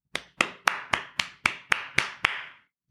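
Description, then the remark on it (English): A short round of applause congratulating an album ranked number one of the year, made of eight sharp, evenly spaced claps in a steady rhythm, each with a brief bright ring before the next, with no voices. “They earned a Behold Pop Culture round of applause.”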